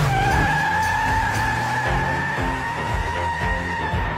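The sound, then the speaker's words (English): A Rolls Royce car's tires screech in a long, loud, sustained skid, with a high squealing whine held steady over a low engine rumble that shifts and revs throughout. “I'm having a fun time driving my car, okay?”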